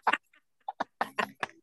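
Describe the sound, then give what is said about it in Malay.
Chickens cluck close to the microphone in a quick, uneven series of about six short, throaty calls, with brief pauses between them and no talking. “Macam mendekatkan mic kepada ayam tu, itu bukan effort, effortless.”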